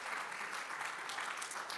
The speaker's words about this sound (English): Give everybody a round of applause.